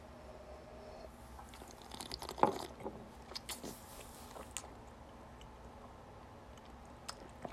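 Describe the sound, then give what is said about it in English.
Quiet sips of a 114-proof, cask-strength spirit: a few short wet slurps and mouth clicks clustered in the middle, then soft lip and tongue sounds fading into near silence, with no talking. “Hold on, I'm taking another sip.”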